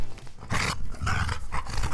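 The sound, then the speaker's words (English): A small dog growls in a series of short, throaty rumbling bursts, loud and raspy, with no one talking. “That way you can hear this little guy growl right into your soul.”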